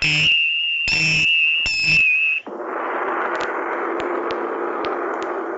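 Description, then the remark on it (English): A steady high-pitched time signal tone runs for about two seconds, punctuated by three short, buzzy pulses, then cuts off into a wash of hissy static with faint clicks. “At the tone, the time will be somewhere around 6:50 o'clock.”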